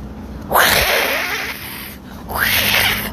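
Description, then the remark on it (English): A person does a vocal impression of a duck, making two loud, raspy, nasal quacking bursts, the second shorter than the first, with a brief pause between them. “It just sounds like a sick duck.”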